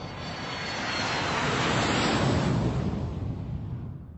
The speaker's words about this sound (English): I'm kind of talking to you guys while I was finishing a couple miles on the treadmill, so if you hear that noise, that's what it is.